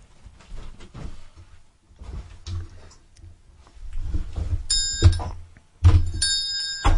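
A small handbell rings in two bright, shimmering bursts near the end, preceded by several seconds of soft clunks and fumbling handling noises as someone behind the scenes tries to ring it.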